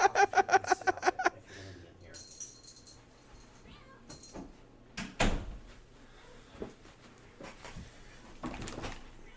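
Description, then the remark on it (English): A door clunks open partway through, with a few more knocks and rattles after it. A rapid run of meows from a cat waiting outside the door comes first, and faint voices murmur in the background. The door is being opened to let the cat in and take her collar off. “The cat's losing it outside, so I'm just going to open it and take her collar off.”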